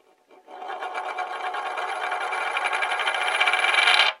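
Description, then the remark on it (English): A heavy metal Tyrannosaurus power coin, a toy figure accessory, makes a continuous metallic rattling whir that grows steadily louder over about four seconds, then stops abruptly. No one speaks. “He comes with a Tyrannosaurus power coin, and this thing is hefty.”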